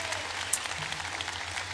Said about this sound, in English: And so can we give our families a round of applause? They're here and they're ready to go this morning.